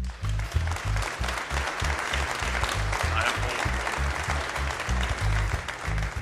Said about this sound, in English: Thank you. Go ahead and clap.